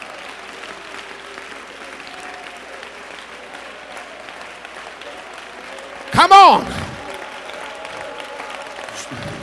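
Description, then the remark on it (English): An audience claps steadily for the Lord throughout, a dense rattle of many hands holding at an even level, with a louder burst of voices cutting in briefly partway through and a voice speaking over it. “Oh, let's give the Lord a hand clap today.”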